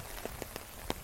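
Rain patters steadily onto a hard surface, with a soft continuous hiss broken by several distinct, louder drips landing at irregular intervals. No voices.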